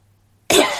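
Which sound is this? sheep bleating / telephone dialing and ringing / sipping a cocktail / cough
cough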